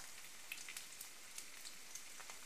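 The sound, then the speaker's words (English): Bacon sizzles in a pan: a steady crackling hiss dotted with sharp little pops, fairly quiet, with no voices. “And of course, frying bacon.”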